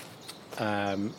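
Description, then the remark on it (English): A mistle thrush, one of three chasing each other in a territorial fight, gives a single harsh, buzzy rattle lasting about half a second, preceded by a couple of faint clicks, with no talking. “Oh, there's three actually, they're having a fight, a territorial battle. Wonderful. It's our biggest thrush, really big.”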